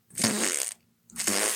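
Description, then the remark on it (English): Two loud, close-up wet fart noises in quick succession, each a sputtering, bubbly blast about half a second long, separated by a brief silence, with no talking. “And as you can see from this picture, Joe Manchin loves gas so much, instead of smiling at strangers, he prefers making long and wet farting noises.”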